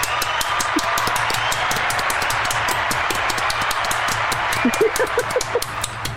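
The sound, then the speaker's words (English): A sustained round of applause from a crowd, dense overlapping claps at steady loudness for the whole stretch, with a few faint vocal whoops near the end. “Everyone, please help us joining us and giving a round of applause”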